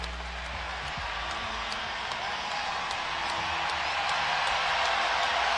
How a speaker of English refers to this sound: And Chris turning this crowd up. He's getting everybody involved. Listen to the sellout crowd here at Scotiabank Arena. The place coming unhinged right now.